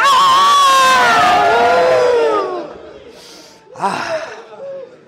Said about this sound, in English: So let's get up. Woo! Let's take some breaths. Let me hear you yell.